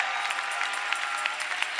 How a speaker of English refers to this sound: Now, if you believe it, you ought to clap louder than you've talked about politics. You ought to shout louder than you've griped about oppression.